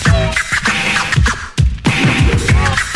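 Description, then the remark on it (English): Rapid vinyl scratching on a turntable, with quick back-and-forth swipes that zip up and down in pitch in a busy, loud rhythm, pausing briefly midway before resuming. “Now make the record burn.”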